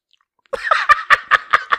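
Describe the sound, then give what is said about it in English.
After a brief silence, loud crunchy chewing starts up as an ASMR eating demonstration: about six sharp, crackling bites in a quick, steady rhythm, with no one talking over it. “I usually have like a soda or water, but I'll demonstrate.”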